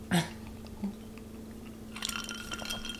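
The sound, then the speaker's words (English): A soft knock of glassware is followed by bright, ringing clinks of glasses of sidecar cocktails touching in a toast, fairly quiet, with no one speaking. “Before we dive in, we're gonna definitely take a sip of our sidecar. Sidecar, cheers.”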